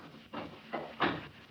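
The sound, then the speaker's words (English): A library door being closed: three short, rough bursts of rattling noise, the last one loudest as the door swings shut, with no voices. “Go ahead, close the door.”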